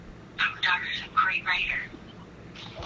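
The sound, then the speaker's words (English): A voice comes through a phone line from a phone that is on its charger, in short bursts, sounding thin, muffled and warbling as if heard from underwater, with a low hiss filling the gaps. “your phone sounds like you're the underneath the ocean.”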